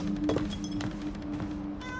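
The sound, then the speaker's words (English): A cat meows, a few drawn-out, tonal cries running into one another over a low steady hum, with no one speaking. “I hate cats.”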